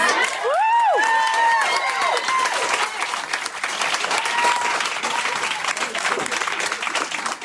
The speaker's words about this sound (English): This might be the most enthusiastic applause and cheering of the whole night. I imagine it's cathartic for a lot of the non-black parents in the audience.